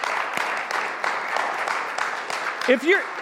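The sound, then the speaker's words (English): A crowd applauds the dozens of volunteers who serve, with steady, dense clapping that holds an even level throughout, and near the end a couple of rising and falling cheers or whistles cut through. “If you know some of them, like for a moment, could we just give them a round of applause for the willingness that they have to serve?”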